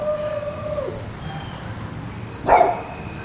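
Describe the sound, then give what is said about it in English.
A single sharp bark from a dog in a backyard sounds about two-thirds of the way through, at moderate loudness. It stands out against quiet outdoor background noise and a few faint high, steady tones. “You may hear some sounds of nature in the backyard, including possibly my dog barking.”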